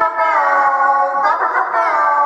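A comedic alarm sound effect: a loud, buzzy, harmonic-rich tone that wavers and warbles continuously for about two seconds, processed with an echoing effect, with no talking over it.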